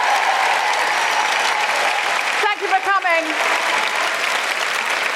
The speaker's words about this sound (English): I don't have time to name everybody, but can we just have a huge round of applause for all of the incredible performers and our panel.